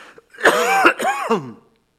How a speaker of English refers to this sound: And the scripture, still not COVID-19. I might cough again, however. Here it is.